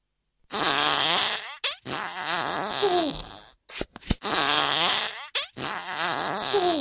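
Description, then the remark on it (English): Loud, drawn-out cartoon fart sound effects from a matching-pairs mini game, marking a matched pair: two rasping blasts with a buzzy, wobbling pitch, a couple of sharp clicks, then the same pair repeated. No one speaks. “A perfect pair of poots.”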